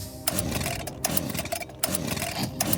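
A chainsaw runs loudly and steadily with a raspy two-stroke buzz, surging in brief revs several times over a few seconds.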